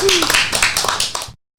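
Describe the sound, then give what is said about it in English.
A short burst of lively applause, many quick overlapping claps for just over a second, then cutting off abruptly into silence. “All right, let's give her a big round of applause just for being her.”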